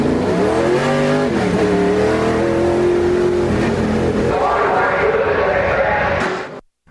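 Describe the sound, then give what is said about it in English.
Race car engines at Ocean Speedway, Santa Cruz County Fairgrounds near Watsonville, rev loudly and continuously, their pitch climbing, dipping and rising again with a roaring, harmonic whine, dominant until the sound cuts off abruptly near the end. “Get up and go for the loud, raucous, rip-roaring racing fun this Friday night at Ocean Speedway.”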